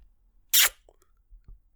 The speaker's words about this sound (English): All right, give me a kiss, Dad, on the mouth.